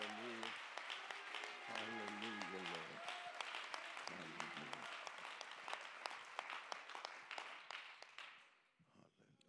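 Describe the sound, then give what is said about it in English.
An audience claps their hands to give God the praise, in sustained, dense applause with sharp individual claps rising above the wash, while voices call out briefly underneath; the clapping tapers off near the end. “I think it's a great opportunity for us to clap our hands and give God the praise.”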